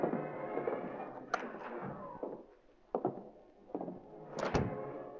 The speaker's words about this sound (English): There they found another mooring, with stairs leading upward from a platform. Scrambling from the boat to the stairway, Reed and Cato ascended stealthily and opened the unlocked door.